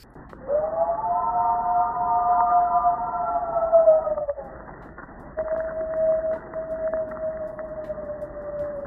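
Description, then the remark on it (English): A person imitates a Bigfoot howl at Boggy Creek, calling for a response: a long, sustained tonal cry that slowly falls in pitch, then after a short pause a second steady, slightly lower howl that trails on. “Let me give a Bigfoot howl and let's see if we get a response.”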